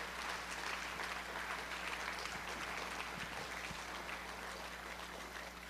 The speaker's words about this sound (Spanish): Dele ese aplauso al que se lo merece.